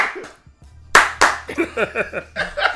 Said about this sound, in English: Yo, but he gave us short. Yeah, this nigga gave one clap.